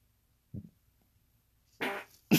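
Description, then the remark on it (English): A loud fart from a man: a brief low puff, then after a pause a longer, raspy blast and a final sharp burst at the end, with no talking. “Guys, if you find me dead, it's because he farted.”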